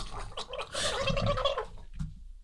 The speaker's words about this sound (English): What the fuck was that? Gobble, gobble, gobble? What the fuck? I was drinking water and laughing at the same time.